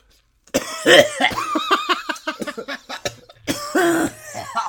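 A person coughs in a loud fit of harsh, rasping bursts, tapering into short hacks before a second strong bout of coughing near the end.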